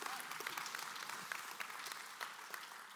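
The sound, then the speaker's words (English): Steady applause from a church service audience, a dense wash of many hands clapping at a fairly constant level with sharper individual claps popping out, no voices. “That, yeah, you guys are better than first service. They didn't even clap.”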